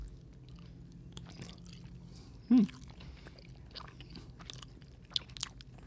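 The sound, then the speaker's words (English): Biting and chewing of a snack stuffed with a sticky, goo-like cherry punch filling. Wet, squishy mouth sounds run throughout, with one sharp, louder bite about halfway through. Nobody speaks. “I don't either, but let's bite into it and see.”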